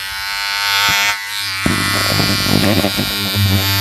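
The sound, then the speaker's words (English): A steady electric shaver buzz drones on with strong low hum and dense harmonics as a face is shaved, shifting in tone as it presses against skin, with scratchy rasping bursts in the second half. “I shaved my face.”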